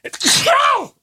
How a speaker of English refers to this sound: I think I need to sneeze.